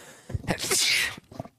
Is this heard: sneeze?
yes